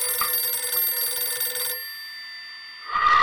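A telephone rings once in a steady, buzzy trill for under two seconds, then falls quiet before another sound starts right at the end.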